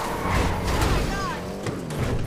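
Video game car driven very fast, flying up and crashing into a wall: a loud, continuous engine roar broken by several sharp impact thuds and a brief high screech, all busy.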